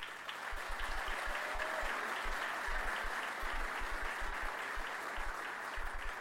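A crowd applauds Detroit Mayor Mike Duggan as he is introduced, a dense, continuous wash of clapping that holds at an even, fairly loud level with no voices on top.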